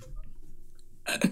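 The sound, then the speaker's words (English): After a second of near silence, one sudden, sharp sneeze bursts out, loud and explosive, then cuts off quickly. “Just a bunch of idiots laughing at sneezes and urine of poop.”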